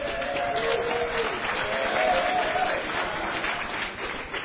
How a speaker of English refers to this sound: go ahead and clap. Hey, there we go.